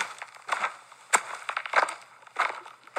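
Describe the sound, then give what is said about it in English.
A footsteps sound effect of people walking away from a car: footsteps crunch along at a steady walking pace, about five gritty, crackling steps, each a sharp burst of noise over a quiet background with no talking. “Wait, I think I got footsteps.”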